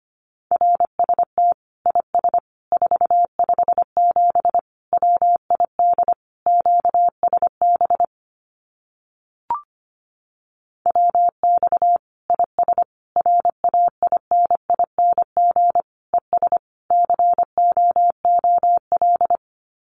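Morse code sent at a brisk 25 words per minute, spelling out common amateur radio QSO phrases, a single steady mid-pitched tone keyed into rapid dots and dashes, broken by a short pause midway with a faint click.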